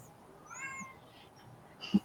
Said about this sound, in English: Hi. I heard that cat. Yeah, he's outside the doors right now. He's a little lonely.